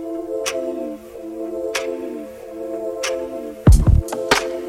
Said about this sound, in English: Clock's ticking.